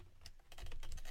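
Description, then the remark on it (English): Rapid keystrokes on a mechanical keyboard with Cherry MX Red switches, a quick run of soft clacks at moderate volume with no voices. “I am currently rocking, what are these? Cherry MX Reds right now.”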